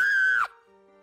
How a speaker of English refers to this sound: And then, when I finally see the fingers, filthy fingers without nails, grasp the windowsill, I scream. I scream like I've never screamed before.